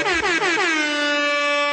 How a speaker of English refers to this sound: This is how we start every podcast now. DJ Airhorns. When I'm on the ones and twos, DJ Airhorns only.